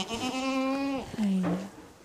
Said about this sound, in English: So this is Raptor. She's a La Mancha goat.